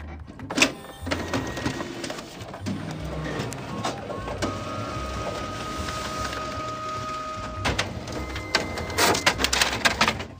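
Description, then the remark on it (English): A school printer runs for about ten seconds with steady mechanical whirring, a few sustained motor tones, and sharp clacks and thumps near the start and in a busy burst at the end. “This week's episode is brought to you by our own school printer.”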